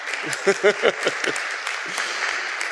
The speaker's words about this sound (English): Give him a round of applause there, folks.